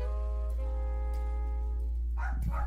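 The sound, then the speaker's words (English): Two quick barks from pet dogs arrive near the end, following a stretch of steady low electrical hum with no talking. “Oh my gosh, my dogs are acting up.”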